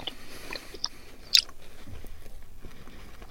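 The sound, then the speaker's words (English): Crunchy chewing of a three-layer wafer biscuit with chocolate hazelnut cream sandwiched between the layers, with a sharp crisp snap near the middle followed by softer, steady mastication sounds, no talking. “Okay, have a munch on that.”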